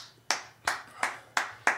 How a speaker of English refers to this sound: Now we're going to go for, feeling pretty good. I think we'll go for 14 claps per second. Let me just try and get that rhythm.